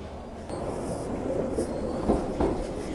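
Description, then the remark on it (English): A London Underground tube train, reasonably empty, pulls into the station with a steady, loud rumble, the low roar of the carriages broken by a few metallic clanks and rattles near the end. “Thankfully, the tube has arrived, reasonably empty.”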